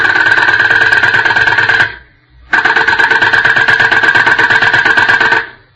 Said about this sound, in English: What's that, miss? Is that a drill? Yes, the doctor is working on a patient.